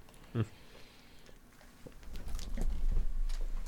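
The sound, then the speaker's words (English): A cat crunches on Pringles crisps: irregular, crackly bites and chewing snaps, one sharp crunch early on, then a busier run of crunches over a low, steady rumble. “So the cat likes Pringles. It's official.”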